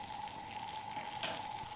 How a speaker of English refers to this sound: We turned up the heat and poured in some water. Bring the water to the boil. When the water was boiling, we poured in the saltpeter and sugar mixture. Here's the water boiling now.